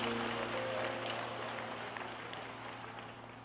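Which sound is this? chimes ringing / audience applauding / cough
audience applauding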